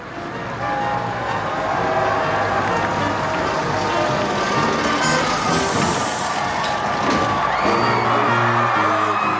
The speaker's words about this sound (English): Cheers from the crowds lining the streets of Windsor. We heard from miles around as Prince Charles and Camilla Parker Bowles passed through them on the way to their civil marriage ceremony.